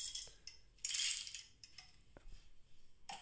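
Coffee beans pour into a coffee grinder in a hard, rattling rush lasting about half a second, followed by scattered light clicks and ticks as the last beans settle, fairly quiet.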